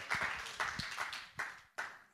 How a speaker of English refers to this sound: Would you give the Lord a hand clap, please? Give him a praise.